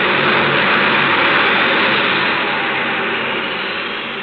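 A loud, steady roar of an airplane engine as the plane carrying Mr. Diotto takes off, a broad rushing drone that holds strong and then slowly begins to fade toward the end.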